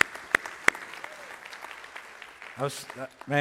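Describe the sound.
A church audience applauds as a clap offering to the Lord after worship, with a dense, steady wash of many hands clapping and a couple of sharp louder claps early on, then a voice begins speaking over the fading applause.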